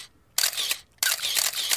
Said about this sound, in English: All these idiots snapping pictures.